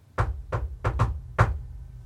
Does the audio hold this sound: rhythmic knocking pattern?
yes